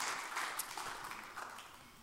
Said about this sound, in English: Give the Lord a hand clap of praise as you're being seated.